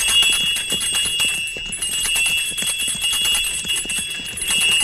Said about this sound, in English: Put the horses to a trot. Right. Get up. Get up there. Now I'll ring the bells and attract a little attention.